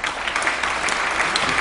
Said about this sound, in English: Can you feel the tepid, yes. The tepid applause for that one?